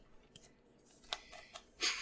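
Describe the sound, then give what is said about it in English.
Several sharp, close-up clicks from a pen being clicked right by the microphone, spaced irregularly, with a louder, slightly longer click-and-rustle near the end. No one speaks. “I bet it's like me clicking the pen.”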